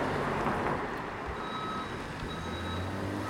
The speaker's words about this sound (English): It's an Amazon Prime truck pulling up right in front of him. Nice. You can hear some beeping.